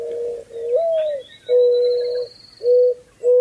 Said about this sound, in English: There it is. So there's mourning dove for you. So M-O-U-R-N, mourning dove, another sign of spring.